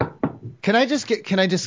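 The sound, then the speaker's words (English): Two firm, loud knocks on a door in quick succession, followed right away by a voice speaking. “Oh, someone's at the door.”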